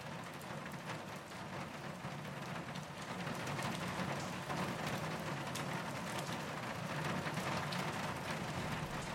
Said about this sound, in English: The rain softens.